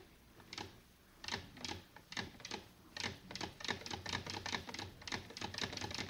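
A sewing machine clatters, its needle stitching a single thread chain in a fast run of sharp mechanical clicks that start hesitantly, then settle into a steadier rhythm. No one speaks.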